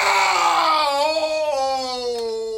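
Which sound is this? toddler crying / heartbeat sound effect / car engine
toddler crying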